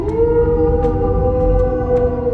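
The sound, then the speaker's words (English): The wolf Fenrir howls victoriously in a hall, one long, loud, steady note that holds without a break, its tone rich and resonant. Nobody speaks. “Fenrir shook the hall with a victorious howl.”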